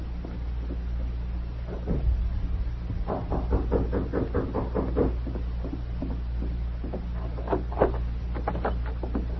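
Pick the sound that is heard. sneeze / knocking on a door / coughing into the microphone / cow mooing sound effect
knocking on a door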